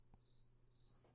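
A crickets-chirping sound effect played from a soundboard app on a phone, in steady, evenly spaced bursts of a high, thin trill, with faint low hum underneath and no voices.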